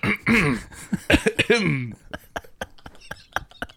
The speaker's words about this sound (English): A classic comedy cough. I have in brackets, cough.